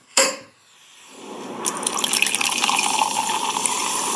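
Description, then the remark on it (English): A sharp pop as a bottle opens, then a drink pours and foams over, the bubbly hiss swelling into a steady, crackling foam that runs on fairly loud. “Cheers to the final A episode. Wait, wait. Hang on. Oh, my. I got to get a mop.”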